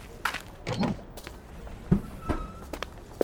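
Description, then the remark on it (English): A revolving door turns with a soft creaking whir while a few scattered footsteps pass through it as the doors spin, punctuated by light thumps and knocks. “It's called a revolving door. All you have to do is step inside and keep walking through as the doors spin.”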